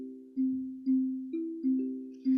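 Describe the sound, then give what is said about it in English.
Five chords of a song's chorus, among them C, F, G and D chords, ring out from an instrument in a steady, slightly uneven rhythm, each struck cleanly and left to sustain and fade before the next, moderately loud with no voices. “All right, this time I'm going to play the chorus and I'm going to use some of the chord notes.”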